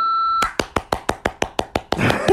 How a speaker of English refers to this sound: It's always going to be like this. Don't expect it to start differently. I know you sit there every week and think, is she going to clap? And I always do.